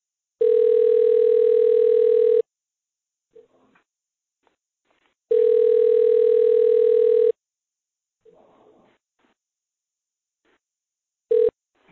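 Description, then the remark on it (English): A steady electronic telephone tone sounds loud and clear in two-second bursts separated by quiet pauses as a caller is dialed back into a conversation, repeating twice before a third tone briefly starts, with faint rustling in the gaps. “So you might hear a dial tone for a moment, and then she'll be back in the room with us.”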